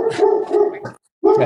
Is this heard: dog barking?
yes